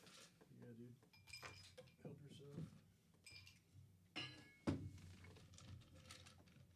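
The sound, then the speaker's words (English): Glass clinks and bottle handling as whiskey is poured into a glass, a sharp clink standing out near the end, with muffled voices murmuring in the background. “Yeah, let me get, hold on, I'm going to pour myself a glass of whiskey here.”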